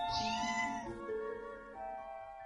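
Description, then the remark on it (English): A cat lets out one long, drawn-out meow, its pitch sliding and wavering over a couple of seconds before trailing off, with no one talking. “Kitty!”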